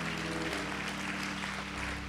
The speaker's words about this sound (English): Now, those weren't all Rialto people you heard clapping. they're just happy they're here too.